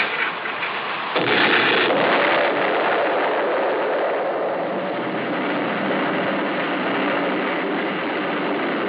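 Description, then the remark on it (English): A single loud detonation, set off with a plunger, bursts in after a second of low rumbling, followed by a long, heavy roar of debris and echo that stays loud to the end, with no voices. “Okay, Lee, the plunger. Here, sir. All ready. All right, then lie down. Quick, get down. Here she goes.”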